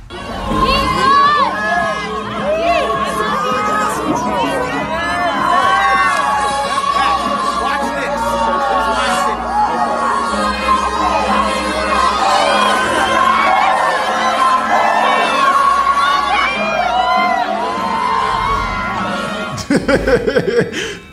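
A packed bar crowd, loud and steady for the whole stretch: dense overlapping chatter, bursts of laughter and whoops of cheering, with a few sharp clatters right at the end.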